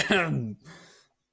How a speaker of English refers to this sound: Don't know what that was. I just literally just needed to cough.